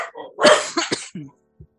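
Dogs bark in a quick, uneven burst of four or five sharp barks, fairly loud, fading to a single softer yip at the end, with no talking.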